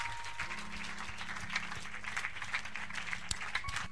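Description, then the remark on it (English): A church audience claps hands together in a dense, continuous patter of applause, with no clear rhythm and a low hum beneath. “Clap your hands.”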